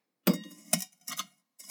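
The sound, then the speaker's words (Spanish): A small drinking glass being handled at the start of making a drink inspired by Spain's Agua de Sevilla, with four separate clinks and knocks, each bright and briefly ringing before fading, spaced unevenly over under two seconds with no voices. “Para comenzar, vamos a tomar nuestro vasito.”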